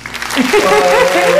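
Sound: round of applause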